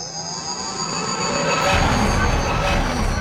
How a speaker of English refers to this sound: And you're right, I am recording this link on a train. That's how I roll.